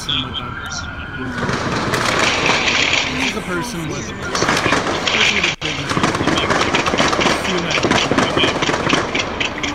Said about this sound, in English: This is not one person. This is a person with a semi-automatic.